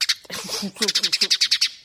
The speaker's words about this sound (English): This is the bird.